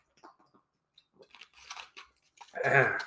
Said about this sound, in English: Excuse there, I'll take some swig of a little water.